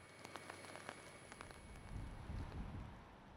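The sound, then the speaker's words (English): Rain falls steadily outdoors at Westminster Bridge, a soft constant hiss with scattered sharper drop taps, over a faint low rumble that swells slightly toward the end. No one speaks. “While the rain fell at Westminster Bridge, buses came to a stop, remembering the 26 of their colleagues who have fallen victim to the disease.”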